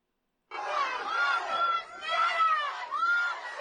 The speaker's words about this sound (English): They're saying, so there's people, these people in the background saying, Black Lives Matter, Black Lives Matter, chanting. And this woman and her two children, listen to what they're saying.